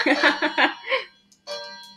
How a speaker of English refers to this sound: sorry, I need to turn my ringer off. It's okay. Mine's been the bells. The bells.